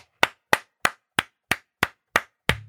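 Eight loud, sharp hand claps in a steady, even rhythm as a speaker claps his hands directly in front of his own microphone, so each one cracks and rings briefly, with no voices.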